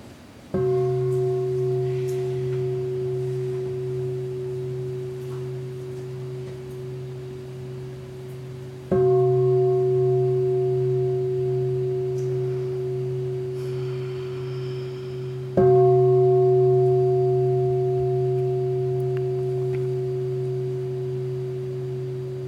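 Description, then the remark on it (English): A meditation bell is struck three times during a group meditation sitting, each ring a steady, sustained tone with clear harmonic overtones that slowly fades before the next strike. No one speaks. “So just listen to the bell.”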